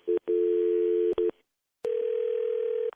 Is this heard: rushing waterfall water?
no